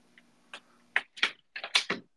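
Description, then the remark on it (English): A door being closed, heard as a quick series of sharp clicks and clacks from the handle and latch, with no one speaking. “do you mind if I just I just need to close the door?”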